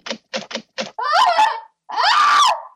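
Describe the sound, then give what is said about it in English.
Four quick, heavy fist bangs on an apartment door from the hallway outside, in an uneven rhythm, followed by a person yelling loudly twice. “He bangs on Brittany's door.”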